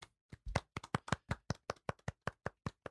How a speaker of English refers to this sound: Episode 62. And Wait. Let's do a round of applause.